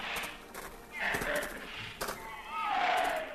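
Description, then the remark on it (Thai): Heavy camel hooves plod at a slow, uneven pace, a handful of dull thuds, with a few drawn-out, wavering animal moans rising over the steps near the end; a caravan of ten camels carrying gifts and valuables travels east across the desert toward the town of Haran. “หลังจากนั้นไม่กี่วันเอลิเยเซอร์กับคนใช้อีกหลายคนอูด10ตัวบรรทุกของขวัญและสิ่งมีค่าต่างๆออกเดินทางไปทางทิศตะวันออกผ่านทะเลทรายมุ่งหน้าไปเมืองฮาราน”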